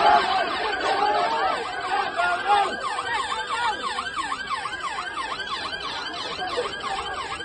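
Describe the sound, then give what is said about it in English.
Several sirens whoop and wail in fast, overlapping rising-and-falling sweeps, loud throughout, over a dense, rough din of a rioting mob chanting "get them out" amid clashes with police, strongest in the first few seconds. “So they're yelling there, get them out, get them out, get them out.”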